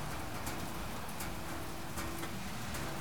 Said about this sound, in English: We're on our porch. There's a nice rain, so we thought we'd come do a summer storm.